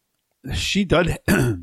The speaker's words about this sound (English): Sorry, listener, a little cough today,